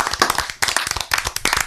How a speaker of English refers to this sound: Cricket applause. It is cricket applause.